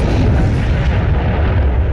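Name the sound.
explosion sound effect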